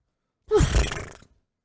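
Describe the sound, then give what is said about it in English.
A person imitates a horse with one breathy, snorting blow lasting under a second, a short falling voiced tone at its start, fairly loud and with no talking around it. “That was my horse impression.”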